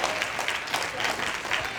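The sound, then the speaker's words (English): An audience claps together, producing a dense, steady patter of many hands that stays fairly loud and even throughout, with no clear voices standing out. “look at all them folks up clapping their hands.”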